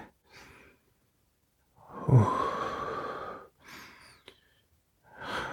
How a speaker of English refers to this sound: Oh, I start sniffing your dick through your underwear.